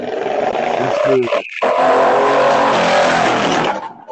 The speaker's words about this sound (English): A lot of traffic around here. Of course. Not that we record. That's how it be. Right, that's how it be when you recording. It was quiet a minute ago.